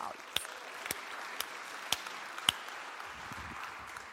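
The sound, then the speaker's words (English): A church crowd applauds two new Trinity Grace church plants in Williamsburg and Midtown, softly in a steady wash of clapping, with a few sharper, louder claps standing out at roughly regular intervals before it thins toward the end. “Let's clap for them.”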